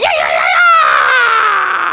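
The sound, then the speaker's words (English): A voice lets out a loud, sustained, high-pitched scream imitating a wild banshee, a single shrill wail held steadily for about two seconds, intense. “I'll do my wild banshee scream. I'll be a little bit like this.”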